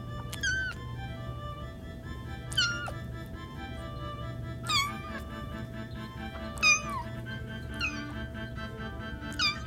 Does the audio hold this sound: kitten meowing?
yes